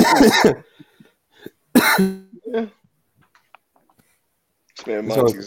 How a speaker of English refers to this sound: I got my cough, you know.